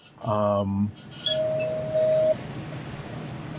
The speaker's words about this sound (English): I'm still going to ring the spoiler bell.